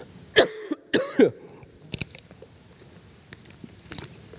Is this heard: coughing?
yes